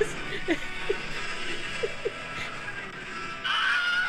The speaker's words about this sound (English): Oh, and with the Wilhelm scream added at the end. Very good.